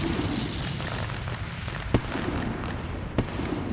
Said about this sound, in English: As light takes up the space. An explosion of untold proportions fills up the room.